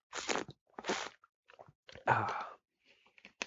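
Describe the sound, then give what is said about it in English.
Someone drinks water in a few noisy bursts: crackly, crunchy gulps and slurps separated by short pauses, with small clicks and a brief final swallow sound, no talking. “And this one's kind of long, so I'm going to take another drink of water first.”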